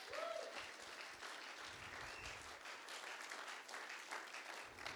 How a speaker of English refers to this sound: If you believe that, give God a big clap offering. Come on. Hallelujah.